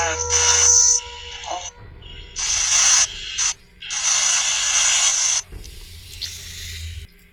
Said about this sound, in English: There's a woodpecker that's been going nuts during your story and now.